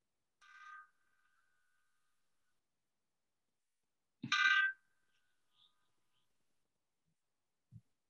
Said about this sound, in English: it rang 29 times for each man on the Edmund Fitzgerald. Okay. Start the intro, or I'm letting these bells ring.